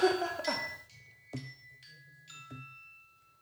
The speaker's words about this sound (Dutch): Er gaat een bel.